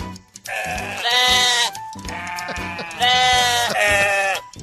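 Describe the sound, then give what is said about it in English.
A sheep bleats twice, loudly: two long, quavering, nasal cries with a short pause between them and no other voices around. “Bleeding sheep.”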